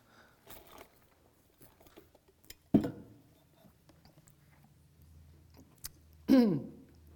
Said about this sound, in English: I'm dry this morning. Let me get my water. Sorry about that.